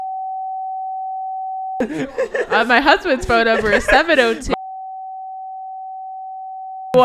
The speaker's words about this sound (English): Leaves it in with just beeps over the number. That would actually be pretty funny.